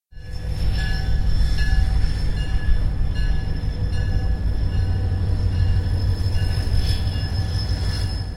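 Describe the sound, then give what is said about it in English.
A train rumbles steadily past, heavy low-end roar with metallic squeals and ringing tones from the wheels on the rails, sustained loud for several seconds with no voices. “Just then, the train passed us, and I went back to guarding the storehouses.”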